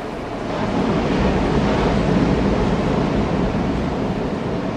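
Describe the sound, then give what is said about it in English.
A steady roar of ocean surf washes continuously onto the shore, broad, with a gentle swell in loudness after the first second and no voices. “To now breathe, breathe into the ocean.”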